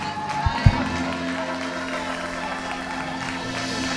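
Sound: audience applauding and cheering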